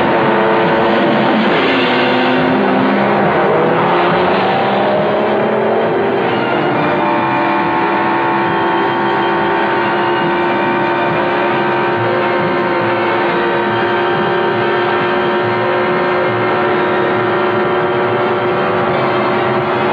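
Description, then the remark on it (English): Loud Grand Prix race car engines roar and whine in the Metro-Goldwyn-Mayer film Grand Prix, directed by John Frankenheimer, their pitch sweeping up and down as they rev and pass in the first few seconds, then settling into a sustained, steady engine drone. “5, 4, 3, 2, 1. Grand Prix.”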